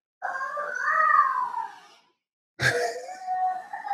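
A child screams in two long, high-pitched wails: the first swells and falls over about two seconds, then after a short pause a second loud scream bursts in sharply and carries on.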